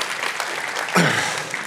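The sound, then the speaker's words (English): An audience claps hands in a dense, continuous patter of many overlapping claps, steady and fairly loud, with a brief voice or cheer rising partway through. “Come on, give me a hand raise or clap those hands.”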